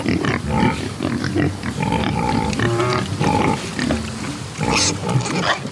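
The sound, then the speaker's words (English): A crowd of dozens of Iberico pigs grunts and squeals continuously and loudly, with overlapping snorts and higher-pitched calls rising through the din, as they root in the dirt and wallow in muddy puddles under a pecan tree in Georgia. No speech present. “Iberico pigs. Dozens of them.”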